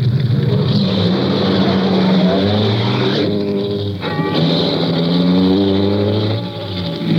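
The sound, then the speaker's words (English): A car engine drones loudly and steadily as the vehicle drives along, its pitch climbing and dropping through a few gear shifts, with constant road rumble and no voices. “After I got the car back on the road again, I felt like a fool.”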